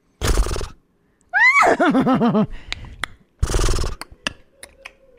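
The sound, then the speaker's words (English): A person does a loud impression of a horse whinny, a wavering, descending warble, framed by two breathy snort-like bursts before and after, with no talking. “So you actually do a good horse.”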